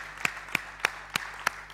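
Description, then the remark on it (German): A church audience applauds itself in steady rhythm: about six sharp, even claps at a brisk regular pace over a low background hum, with no talking. “Gebt euch selber einen Applaus, dass ihr bereit wart, diesen Weg zu gehen.”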